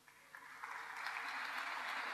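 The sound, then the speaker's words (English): An audience breaks into applause, the clapping starting sparse and quickly swelling into a steady, dense wash of many hands that holds through to the end. “and you will all be considered heroes, and you deserve a huge round of applause.”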